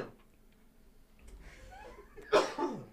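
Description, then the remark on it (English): A sudden sharp burst, likely a man's sneeze, comes near the end after some quiet breathy rustling, followed by a smaller second exhale; fairly loud against a low background. “You're all right there, bro? So he said bless you.”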